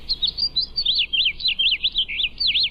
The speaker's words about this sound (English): It was two house finches trying to escape through the large window at the top. I opened the door to the roof, but it wasn't enough of an enticement, and they kept chirping and flapping against the glass.